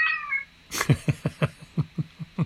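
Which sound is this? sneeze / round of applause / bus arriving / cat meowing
cat meowing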